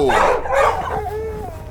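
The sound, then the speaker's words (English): A husky sled dog barks and yips in a quick, excited burst, then trails off into thin whining cries as the noise dies down. “Smelly dog breath. What did you do, have skunk for lunch? Ho, you huskies!”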